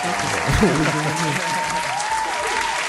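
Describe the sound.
Dense, steady applause at Cold Pizza Studios welcoming guest Young 40 fills all three seconds at an even, loud level, with some whooping voices rising and falling beneath the clapping.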